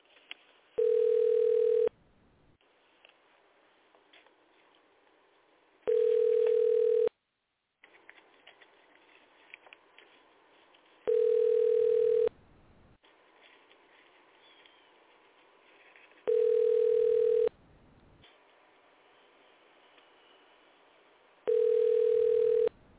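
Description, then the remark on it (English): An outgoing phone call to the office of the mayor of San Francisco rings out: five steady, loud ringback tones, each about a second or more long, evenly spaced several seconds apart over faint line hiss, with no one answering or speaking. “But we'll give them a call and see what's going on.”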